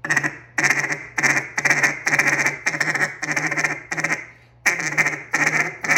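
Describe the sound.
A duck call blown in short sequences: a quick run of short, loud quacks, about a dozen in steady rhythm with one brief pause before the last few, with no talking.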